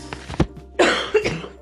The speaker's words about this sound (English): Sorry guys, I have to keep pausing because I think I'm talking too much and I keep coughing.